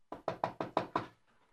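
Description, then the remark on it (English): Six quick, firm knocks on a wooden door in a steady, slightly hurried rhythm, fairly loud, followed by a brief quiet tail. “Who's there?”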